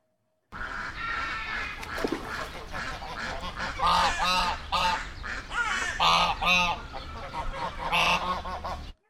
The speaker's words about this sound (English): There's no guzzle bird today, but there are ducks.